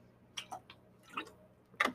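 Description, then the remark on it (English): Someone sips and swallows water from a glass: a few soft, wet gulping clicks spaced unevenly over two seconds, fairly quiet, with no talking. “Hold on a second. I gotta get a drink of water.”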